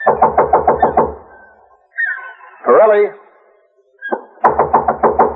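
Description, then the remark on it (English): Two bursts of rapid, loud knocking on a wooden door, each about six or seven quick raps, separated by a pause in which a man calls out once. “if you don't see him around or he don't answer when you knock, go on in anyhow”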